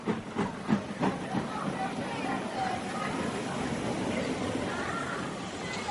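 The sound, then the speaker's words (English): Busy railway station ambience with a crowded train, a steady hiss of steam and rumbling train noise, a few rhythmic clanks early on, and murmuring voices in the background. “Train's pretty crowded. Not a seat anywhere, sir.”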